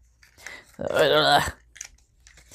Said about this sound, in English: So I'm going to just punch out a few more circles of different colors. And kind of like this paper.